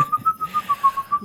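A person whistles a tune in a quick run of about nine short, clipped notes at nearly the same pitch, clear and close, with no talking.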